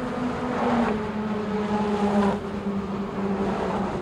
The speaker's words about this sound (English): The Brooklyn Bridge, 7 a.m.